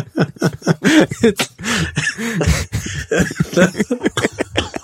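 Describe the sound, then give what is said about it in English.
A loud run of repeated coughs comes in rough, irregular bursts, with strained voiced sounds and a bit of chuckling mixed between them. “Oh no, I started a fucking coughing spree”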